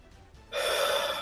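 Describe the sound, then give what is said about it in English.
A single sharp, loud gasp of panicked breath, drawn in suddenly and held for under a second, performed vocally by a person voicing an overwhelmed character, with no talking. “So having that happen, and then like seeing everyone else like taking damage, and then Lotus gets bitten, he's feeling a little bit overwhelmed. He just starts breathing.”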